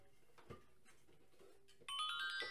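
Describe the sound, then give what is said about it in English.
A phone ringtone suddenly chimes in near the end, a loud, bright electronic melody cutting through a dull, murmuring background. “Oh, there goes your unprofessional phone again.”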